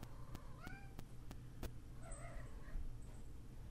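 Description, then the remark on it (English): A cat meows twice at moderate volume, a short rising meow followed by a longer, wavering one, with a few sharp clicks and a steady low hum in the background. “You need to go lay down, kitty.”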